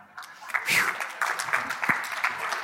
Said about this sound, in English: Oh, go ahead and clap for me real fast. Okay.